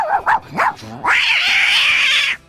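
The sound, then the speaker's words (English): A person vocally imitates a dog and cat fight: a few quick yelping, snarling bursts followed by a long, loud, screeching cat-like yowl that holds steady before cutting off. “And within this routine, I did like a dog and cat fight.”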